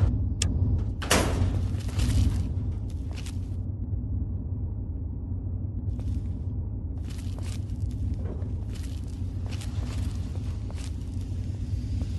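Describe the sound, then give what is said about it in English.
A locked door handle is tried and clunks without opening: a handful of sharp knocks and rattles, one heavier thud early on, over a steady low ambient hum. “All right, locked out.”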